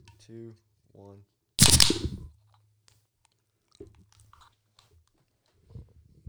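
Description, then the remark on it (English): A beer can is cracked open into the microphones with one loud, sharp pop and a short burst of fizzing hiss. Two brief voiced sounds come just before, and a few faint clicks and murmurs follow. “I want us to like open it into the mics and go.”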